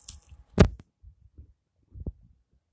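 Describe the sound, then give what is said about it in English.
Someone eats a cookie while talking into a phone: one sharp crunchy bite, then soft, muffled chewing thumps. A second, duller bite follows, with no talking. “I'm talking to you guys on my phone, and let me eat a cookie real quick.”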